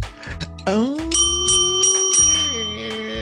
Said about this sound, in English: Oh, and a little happy bell. Oh, the bell's so happy. Bell's it is so a happy bell.